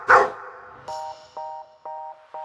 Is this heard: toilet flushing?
no